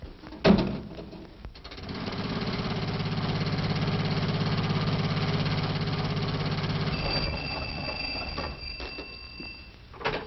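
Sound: car engine running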